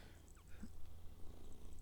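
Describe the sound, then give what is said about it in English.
A female cat purrs steadily, a low continuous rumbling hum with a soft rhythmic pulse, quiet and unbroken with no voices over it. “Oh, she's purring good.”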